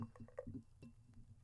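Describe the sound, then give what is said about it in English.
Beer being poured into a glass close to the microphone: quiet, bubbly gurgles and small splashes in quick uneven bursts, then a softer fizzing trickle. “And let's put our mics a little closer to it while we're pouring.”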